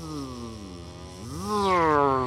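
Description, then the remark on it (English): A drone's steady high-pitched buzz hums continuously, its pitch sweeping upward partway through as it grows slightly louder, with no voices present. “You you heard like some buzzing noise, like.”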